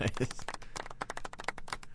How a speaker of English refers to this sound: Little golf clap there.